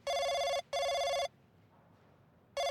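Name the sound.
telephone ringing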